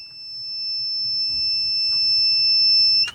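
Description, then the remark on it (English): A small power inverter's alarm sounds as a steady, shrill electronic tone, held unbroken for about three seconds before cutting off abruptly, over faint low background rumble. “My little inverter's decided you've had enough.”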